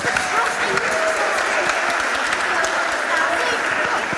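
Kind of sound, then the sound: crowd, audience applause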